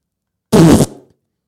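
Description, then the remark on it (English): A single loud, blubbery mouth-made imitation of a broccoli fart: a short buzzing burst of about a third of a second that trails off into a brief rumbling tail. “Because I'll do my broccoli fart, but you've got to go first. Broccoli fart is like...”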